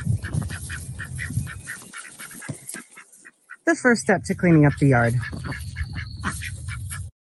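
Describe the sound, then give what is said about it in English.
Backyard ducks, let out to help turn over the yard, call in a steady stream of honking, quacking notes, with a burst of louder calls midway, while a man talks over them outdoors. “So I left the birds alone out here for a while and they've been having a grand old time.”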